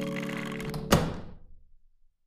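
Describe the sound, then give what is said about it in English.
A single solid thunk of a door shutting, loud, following a soft steady tonal hum, then a brief fading decay into silence. “And a door closed.”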